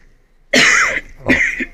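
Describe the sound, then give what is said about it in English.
Two harsh, chesty coughs from a person with allergies, loud, the first starting abruptly after a moment of quiet and the second following a short pause, with a raspy, throaty edge. “Just gonna cough some lung tissue up.”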